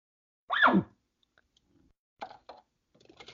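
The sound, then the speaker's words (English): A voice imitates an elk's nervous bark: one short, loud, harsh yelp that drops sharply in pitch, followed after a pause by a few faint clicks and rustles. “It can be called a nervous bark.”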